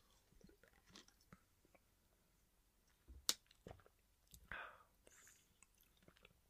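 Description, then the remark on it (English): A quiet sip of Four Sigmatic mushroom coffee: faint mouth clicks, a short sharp tap, then a soft slurp and swallow, with no one talking. “One moment as I take a sip of my Four Sigmatic coffee.”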